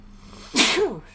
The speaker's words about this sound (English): So, hold on, I gotta sneeze.